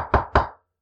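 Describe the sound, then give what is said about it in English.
Two firm knocks on a door in quick succession, fairly loud, each with a short resonant decay, followed by silence. No voices. “Knock, knock.”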